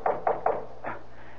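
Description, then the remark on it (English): Three sharp, evenly spaced knocks on a door, followed by a softer fourth knock, fairly loud with no voices. “Answer, but don't open the door.”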